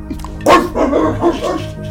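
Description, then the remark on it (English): A person imitates a dog barking with a loud yap followed by a few rougher, growly vocal barks over about two seconds, with no other sounds around it. “Dog Patterson loves ball!”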